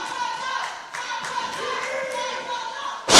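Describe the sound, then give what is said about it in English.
A steady murmur of voices and crowd noise runs for about three seconds, then a single loud, heavy slam of a wrestler hitting the ring mat from a back belly suplex in a tag team match bursts out at the very end. “Beautiful back belly suplex.”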